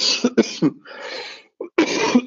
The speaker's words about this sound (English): And I'm going to cough now, I'm afraid.